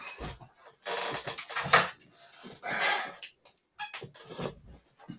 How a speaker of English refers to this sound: I bought this stopwatch, and I can't figure out how to get the alarm to stop on it. I really lost the instructions, so that's interesting.